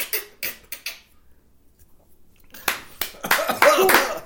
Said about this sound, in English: We clapping because the shot is going down hard.